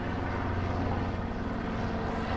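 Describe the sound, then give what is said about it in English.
A steady, loud engine drone of an aircraft passing overhead, a continuous low rumble with a faint pulsing throb and no break, filling the whole moment with no voices. “We get a plane or something, and the helicopters are just a little more noisy than the airplanes.”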